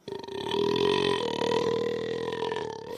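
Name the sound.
long burp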